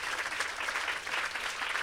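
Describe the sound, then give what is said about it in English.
A crowd applauds steadily, many hands clapping in a dense, continuous patter that stays fairly even throughout, with no voices standing out. “Can we just give him a great round of applause?”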